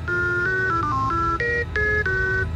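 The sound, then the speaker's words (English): A rapid string of about nine electronic tones, like phone keypad beeps, each a steady two-note chord stepping up and down in pitch, played loudly over a low background hum, answering questions with one tone for yes and two for no. “Let's try one tone for yes, two tones for no.”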